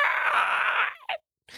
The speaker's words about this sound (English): As you're preparing, I'm assuming, to move towards the front of the train, you hear a gnarled scream.